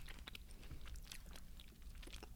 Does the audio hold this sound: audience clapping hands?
no